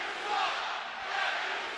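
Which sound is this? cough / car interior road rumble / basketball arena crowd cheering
basketball arena crowd cheering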